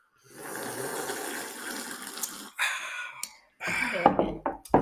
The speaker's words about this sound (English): Sips, guys? First sips. Let's do it.